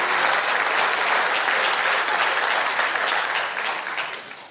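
An audience breaks into a steady, dense round of applause, many hands clapping loudly and evenly before the sound begins to taper off at the end. No one speaks over it.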